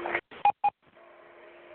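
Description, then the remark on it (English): Two short, clipped electronic warning beeps sound over a muffled telephone line on a call from prison, followed by a steady low tone humming through the line noise. No one speaks. “Well, that's the second beep, so you know what that means.”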